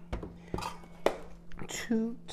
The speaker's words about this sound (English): Just putting all this into the blender here.